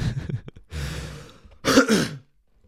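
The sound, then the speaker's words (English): Loud coughing right into the microphone: a rough throat-clearing rasp, a breathy noisy stretch, then two harsh bursting coughs before it falls silent. “And the coughs and into the microphone.”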